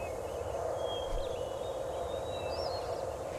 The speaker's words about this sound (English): I like the sound effects. Birds, wind. I feel like I'm there with this bird.